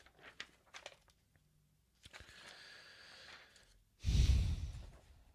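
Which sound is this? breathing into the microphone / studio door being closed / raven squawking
breathing into the microphone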